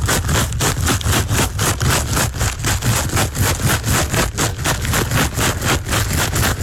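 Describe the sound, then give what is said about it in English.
Skittles shaken in a bag: a steady, rhythmic rattling of hard little candies, loud and continuous, with about two or three quick shakes each second and no voices. “That one is Skittles in a bag.”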